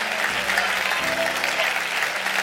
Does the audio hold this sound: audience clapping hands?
yes